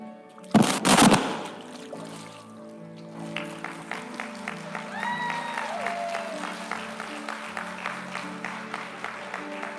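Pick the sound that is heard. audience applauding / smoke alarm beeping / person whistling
audience applauding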